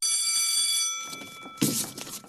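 A school bell rings with a steady, bright metallic tone held for about a second and a half, then cuts off into a sudden burst of rustling, shuffling noise.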